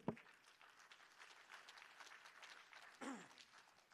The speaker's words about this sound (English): Hello? Clap your hands.